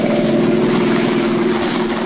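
A car engine drones steadily as the car speeds out of a darkening city toward Maryville, a loud, continuous hum with a rumbling low end and no break throughout. No voices are heard.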